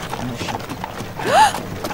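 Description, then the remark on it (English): Horse hooves clip-clop at a steady walking pace as a wagon rolls along, with a short squeaky rising tone cutting through briefly near the middle. “And then I turn and I look and I see the horses and I shudder.”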